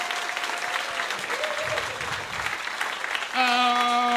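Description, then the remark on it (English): An audience at a live stage show claps steadily for a few seconds, a dense, crackling wave of applause that holds at an even level before a bright sustained musical tone cuts in at the end. “Round of applause”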